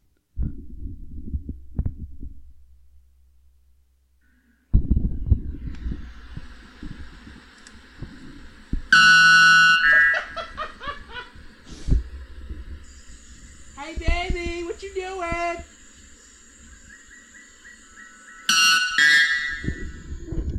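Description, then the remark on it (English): A white bellbird, a Brazilian bird, screams its piercing call twice at about 125 decibels, very loud and harsh, about ten seconds apart, with muffled low thumps and murmuring voices in the background between the calls. “That is the white bellbird, the Brazilian banshee bird. That's 125 decibels.”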